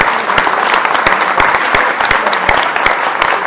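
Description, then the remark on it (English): A church gathering gives itself a round of applause, dense overlapping handclaps forming a loud, continuous wash of applause with scattered sharper claps standing out, no voices on top. “So let's give you all and give each other a round of applause.”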